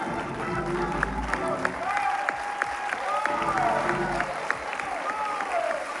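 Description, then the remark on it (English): A church audience claps their hands for God, practicing Psalm 47:1, in a dense, steady wash of applause, with sharper individual claps standing out and voices rising and calling over the clapping. “Now, Psalms 47 and 1 says, clap your hands, all you people.”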